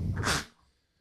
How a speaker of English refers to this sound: Sneeze some more. Do it. Do it. God damn it. Hey, only two. That's like a record. It's good radio right there. I've these like 12 fucking times. Anyway, it's that goddamn cat. He's running around. I can see dander everywhere.